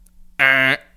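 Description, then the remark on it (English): A single buzzy beep, roughly half a second long, sounded loudly by a human voice mimicking a phone call tone while dialing a call, with no other sounds around it. “Beep. Yeah. Wait, let me dial it again.”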